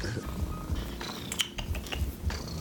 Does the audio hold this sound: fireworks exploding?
no